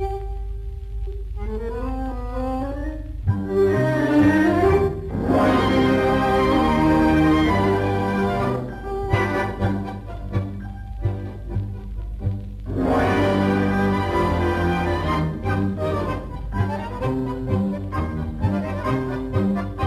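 An old tango recording plays, instrumental with rich, sustained melodic tones and a steady low accompaniment, loud throughout, easing briefly around the middle before swelling again.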